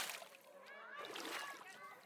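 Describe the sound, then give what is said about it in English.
A person jumps into a swimming pool with a splash, water sloshing and churning for a couple of seconds while children's voices chatter and call out. “Angie arrived at the pool and jumped in the water.”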